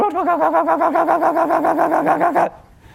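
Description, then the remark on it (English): A car engine with a manual choke cranks with a steady, rapid chugging rhythm for about two and a half seconds, loud, then cuts off abruptly into near silence, as someone tries to start the car in the morning before school. “Every day I would get up to go to school in high school, and I would start to turn that car on, and I'd be like, "Dear God, please let it start."”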